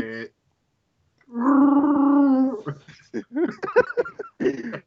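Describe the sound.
Someone does a Chewbacca Wookiee growl impression, a single loud, throaty, warbling roar held for over a second, followed by a few seconds of people talking.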